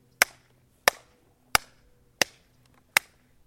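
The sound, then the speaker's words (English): Five sharp, crisp hand claps at a slow, steady pace, each snapping out loudly and dying away quickly, with no voices in between. “Did you clap?”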